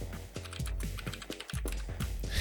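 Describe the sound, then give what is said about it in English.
Rapid typing on a computer keyboard, manually typing a message into a game's chat, a steady patter of clicking keystrokes over a low background hum, with no voices. “Manually type it in.”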